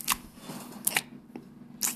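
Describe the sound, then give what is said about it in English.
A horse smacks its lips while chewing: about five sharp, wet clicks at an uneven pace, some coming in quick pairs, fairly quiet with no voices. “See a horse smacking its lips?”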